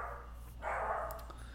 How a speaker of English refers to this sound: Oh, my dog wants to have a few words with you. He's barking at a storm up there.